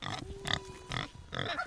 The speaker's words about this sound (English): A very eager pig on a 10-meter leash comes up to greet us.